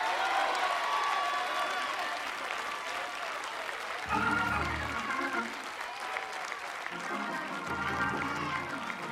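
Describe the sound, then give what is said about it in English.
A large audience claps steadily and loudly, a dense wash of applause that never lets up, with a few voices calling out briefly through it. “I want you to clap a little louder.”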